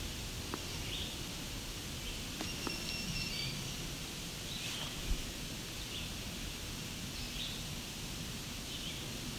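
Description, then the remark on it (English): A black-throated green warbler sings faintly, its high, thin buzzy notes coming a few times over a steady wash of rustling, hissy outdoor background noise. “There's a black-throated green warbler.”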